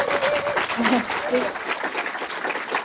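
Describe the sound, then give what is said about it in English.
An audience applauds Sophia Myles as she stays on stage as a guest, a dense wash of clapping at a constant loud level, with a few whoops and indistinct voices rising through it. “Round of applause for Sophia Myles.”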